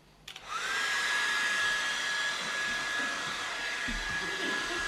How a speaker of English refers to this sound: What happens to a tree when you stick a hairdryer on it? Can you please show us?